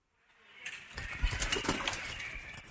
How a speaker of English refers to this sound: The post, Pigwidgeon. Stupid Owl, what's it going over to the Ravenclaw table for?